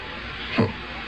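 A steady stream of tap water runs into a test tube holding a small amount of green powder, a constant hiss that swells briefly with a fuller splash partway through, with no voices.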